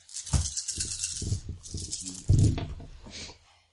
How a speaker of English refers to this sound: All right, so I'm going to roll a total of 9 dice.